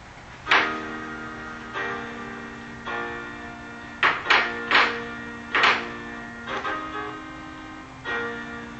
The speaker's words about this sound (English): Let me just play an example of, what if I were to take those chords and play them as parallels?